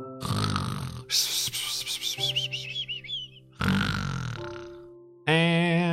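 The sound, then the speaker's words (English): A voice imitates loud, exaggerated snoring, three drawn-out rasping breaths with whistling, nasal squeals between them. “Me snoring!”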